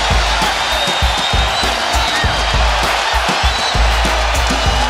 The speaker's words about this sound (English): Bryant, yes! Serving up a facial on Yao Ming. Standing ovation for Kobe Bryant.